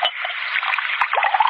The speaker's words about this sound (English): pour the gentleman his wine.